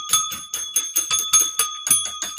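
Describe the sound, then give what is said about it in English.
A small bell rings rapidly and repeatedly, about ten bright metallic strikes in quick, slightly uneven succession, fairly loud, with sustained ringing tones between hits. “I can ring the bell some more.”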